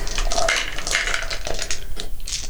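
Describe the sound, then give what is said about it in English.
Dice clatter and rattle continuously as they are handed over and rolled, with bright clicking knocks tumbling together. “Give me all your, yeah, all your dice.”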